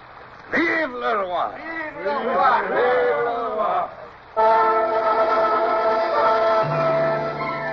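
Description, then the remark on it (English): A crowd of many voices shouts a rising, ragged cheer for the king for a few seconds, then a loud, steady, sustained whistle-like tone takes over and holds to the end. “One day we shall call on you again to thrust down the tyrant and now, one last cheer for the king.”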